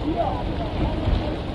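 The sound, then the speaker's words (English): A motorboat engine drones steadily over floodwater as volunteers use boats to reach and rescue residents from flooded homes, a continuous low rumble mixed with wind buffeting the microphone, fairly loud throughout. “They're bringing their jet skis. They're bringing their boats.”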